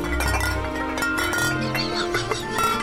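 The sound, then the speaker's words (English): Bright metallic clinking and jingling, like small bells shaken, rings out in quick bursts over a steady low musical hum, continuous for the whole moment, out on a lawn early in the morning just before dawn. “Then early one morning, just before dawn, I heard a sound like bells out on the lawn.”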